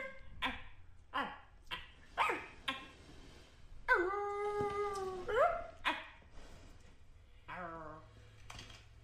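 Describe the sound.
Human voices imitate dogs: a run of short, sharp barks, then a long wavering howl, followed by a few more yips and a brief whine.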